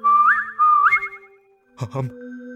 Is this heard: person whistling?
yes